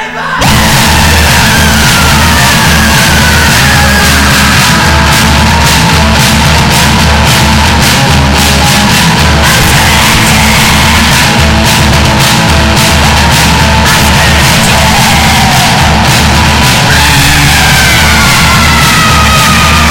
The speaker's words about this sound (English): We've got some noisy, shouty garage rock.